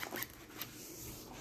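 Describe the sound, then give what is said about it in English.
A zipper being fiddled with: a couple of short, raspy zips followed by a faint, steady scratchy hiss, quiet and with no one talking. “Zippers. Why do you want to talk about zippers for? Because I'm playing with one.”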